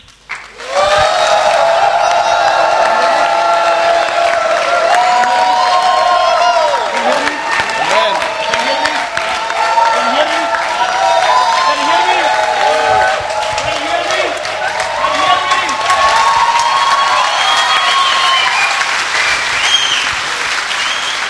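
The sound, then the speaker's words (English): A crowd at a prayer gathering claps and cheers steadily for about twenty seconds, a dense, loud wash of applause with shouting voices and whoops rising above it throughout. “Okay, now, come on, everybody, make a noise until I tell you don't stop.”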